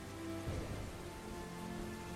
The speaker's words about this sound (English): they're both now settling down to sleep during a real, real wild and wacky kind of thunderstorm going on outside.